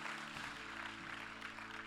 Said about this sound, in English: Come on, clap and give him praise if you're thankful today.